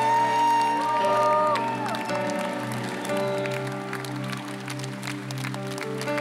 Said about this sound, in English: Give the Lord a clap and a shout it.